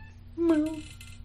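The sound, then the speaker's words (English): A single short meow from a male cat being defensive of his cords, clear, rising and then falling in pitch, with a steady low hum running underneath. “Meow. Ooh. He's defensive of his cords.”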